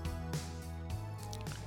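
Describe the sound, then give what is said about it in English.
Someone drinks water, with three soft gulps at a steady pace and a faint wet sound between swallows. No one speaks. “Sorry. I'm trying to drink a gallon of water a day.”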